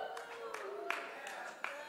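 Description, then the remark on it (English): A few scattered hand claps from just a couple of people during a church sermon, irregular and sparse, ringing out over a low sustained background hum. “are the only ones clapping when I said that.”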